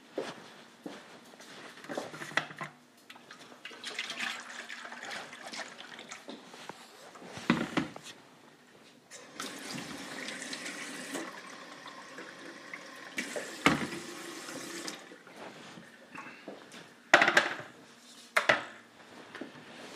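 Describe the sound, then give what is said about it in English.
Tap water runs into a kettle in bursts as it is filled, with clinks and knocks of kitchenware in between, moderately loud, no talking. “Time to put on this kettle.”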